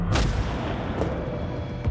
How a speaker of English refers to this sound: Suddenly, the bang of cannon fire makes the young woman jump.